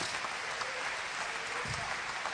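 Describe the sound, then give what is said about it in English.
A church audience claps together in praise during a sermon, a steady wash of many overlapping hand claps, dense and sustained throughout, with no voices standing out. “Why don't you clap your hands with me and praise him?”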